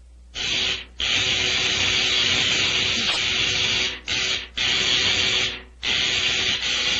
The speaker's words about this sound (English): Now, I adjust these dials, turn on the electrical generator, and...